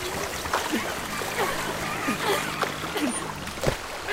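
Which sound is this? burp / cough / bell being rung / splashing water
splashing water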